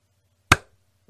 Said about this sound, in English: See how there's two claps? That means it's round two.